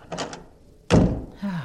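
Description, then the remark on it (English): A door is pulled shut: a few quick rattling clicks from the handle, then a short pause and a single solid, resonant thud as it closes, followed by a faint trailing tone. “Oh, and don't forget to close the door.”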